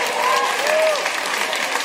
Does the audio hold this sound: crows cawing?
no